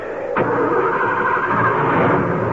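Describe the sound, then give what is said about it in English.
A car engine, in a car that has crashed into boulders, cranks and catches with a sudden burst, then settles into a loud, steady rumbling run, with no voices. “Ooh, we crashed into the boulders. Will the car move?”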